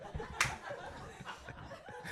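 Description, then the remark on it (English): A single sharp, loud slap from a passing stranger cracks out near the start, followed by soft background murmuring and what sounds like faint chuckling. “I'm not quite sure why you're slapping me, passing stranger.”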